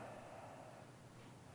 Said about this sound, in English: So let's breathe in again. Ribs expand, and then exhaling all the way.